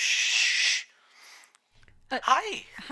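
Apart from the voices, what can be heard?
dog vocalizing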